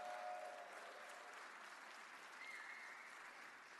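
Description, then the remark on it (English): An audience claps steadily for a few seconds for the San Jose Jazz High School All-Stars U19 combo, a dense, even wash of applause that holds at a constant level without rising or fading, and a brief faint tone shows through near the start. “Let's give them a round of applause, please.”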